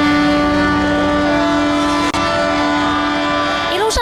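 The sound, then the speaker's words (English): A boat whistle blows in Kaohsiung Harbor, Taiwan, as a boat sounds its whistle and sprays water toward a 15-meter-tall inflatable yellow duck: one loud, steady, low-pitched blast that holds for several seconds with only a momentary break, over a background of rushing noise. “小鸭船鸣笛喷水，就像是在向小鸭说谢谢。”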